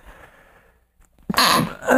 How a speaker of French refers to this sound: Et là, je vais éternuer.